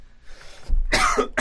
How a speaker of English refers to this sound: Here, you want some water, buddy? I always cough every time I do that voice. No, it's so hard to do.